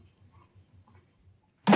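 A girl slams a door shut in someone's face with a sudden loud bang at the very end, preceded by soft, faint rhythmic thumps and near silence.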